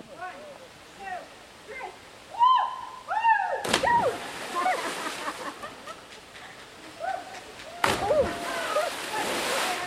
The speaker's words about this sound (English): And since the baboons are out, our group settles on the ledge, overlooking a giant pool. But it doesn't take a lot of urging to get a couple of the more adventurous folks to jump into the water below.